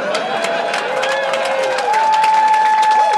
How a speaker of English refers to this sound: You're getting a clap for your segue. Oh yeah. No segue. That's my trick. Yeah, that's what you get clapped for.